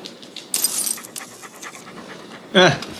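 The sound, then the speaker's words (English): A dog pants in quick, breathy bursts, then lets out a brief whiny vocal sound near the end. “Talking dog.”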